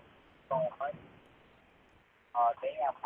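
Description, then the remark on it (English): Broadcast audio of the show, playing on another device, echoes faintly in a caller's background: two short bursts of muffled, tinny, phone-filtered voice, unintelligible, separated by a stretch of low line hiss. “Can you turn us down in the background? I can hear the echo from the background.”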